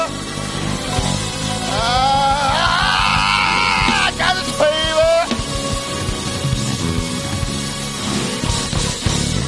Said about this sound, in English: Open up your mouth and scream, I got his favor.